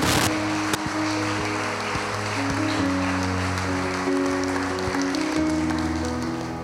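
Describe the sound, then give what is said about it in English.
An audience claps steadily for several seconds as a hand clap of praise to God during a service, a dense wash of many hands, while sustained organ chords hold underneath and shift pitch partway through. “Come on, give Him a hand clap of praise if you're ready for it today.”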